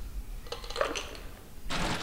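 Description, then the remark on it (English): Ice cubes drop into a cocktail glass: a quick series of faint, bright clinks and rattles, followed by a brief, louder rushing clatter as more ice tumbles in. No one speaks. “And then I'll be adding some ice to the glass.”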